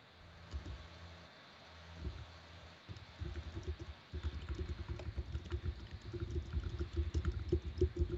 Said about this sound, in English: Oh, somebody's typing. Yeah, who is that? Not me. Sorry, that one was me.